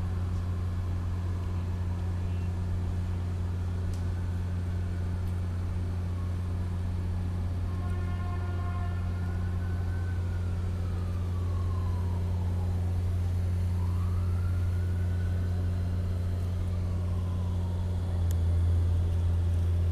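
City street traffic ambience on the streets around city hall, at a TV series film set: a constant low rumble of engines, with a siren rising and falling through the middle and latter part, plus a brief horn blast.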